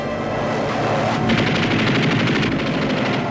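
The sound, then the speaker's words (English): A Japanese Zero fighter plane opens fire as it approaches an aircraft carrier: a rapid, sustained burst of machine gun fire rattles out over a steady engine drone, the shots coming in a fast, loud, continuous stutter for a couple of seconds. “One opens fire as both Zeros approach the carrier.”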